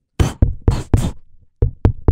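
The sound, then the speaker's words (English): Sharp knocking against a window by a man locked out of the room, about seven raps in two uneven bursts: four quick hits, a short pause, then three more. Loud, hard and percussive, with no talking. “Knocking.”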